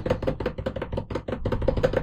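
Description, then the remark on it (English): Rapid knocking on a desk played as a makeshift drumroll, a dense run of dull, low wooden thuds that keeps steady for about two seconds without any talking. “That's me knocking on my desk. It sounds like shit, but that was my drumroll.”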